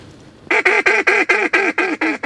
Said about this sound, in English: That was a pair of mallards, and this late in the season, they're paired up a lot, and it's hard to call them to convince them to come over here.